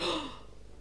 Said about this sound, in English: Sorry, I keep gasping.